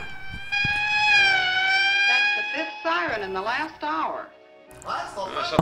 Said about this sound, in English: I'm just sitting here counting sirens.